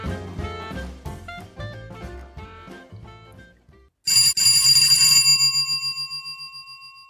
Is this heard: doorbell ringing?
yes